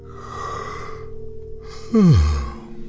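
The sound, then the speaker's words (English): A long, drawn-out yawn: a breathy open stretch, a brief pause, then a louder sigh that slides down into a low, groaning finish. No words are spoken. “They look at you and yawn.”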